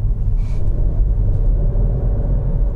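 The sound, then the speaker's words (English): A car engine rumbles with a throaty, steady low-pitched grumble after a downshift to second gear while driving at about 20 miles per hour over the bridge over the River Conwy with the AC off, holding a constant loud drone with no talking over it. “I know I'm only rumbling along at 20 miles per hour over the bridge over the River Conwy at the moment, but let's see if we can hear this engine. I'm going to shift down to second.”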